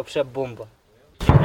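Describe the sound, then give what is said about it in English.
A voice speaks briefly, then after a short silence a single loud artillery blast erupts, a heavy booming burst with deep rumbling low end that carries on to the end; shelling echoing around a village recently left by Russian troops, who are still nearby. “Throughout the day, shelling echoes around them.”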